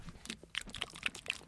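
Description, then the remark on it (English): Crunchy chewing of a meatball with a steady rhythm of about four bites a second, each one a short moist crackle, fairly quiet and with no talking. “And something we like to do to start off these podcasts is chew it.”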